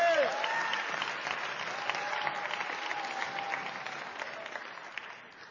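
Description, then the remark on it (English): A crowd claps steadily, a dense wash of many hands that holds at an even level, with a few faint voices and a brief whoop at the very start. “You can clap louder than that.”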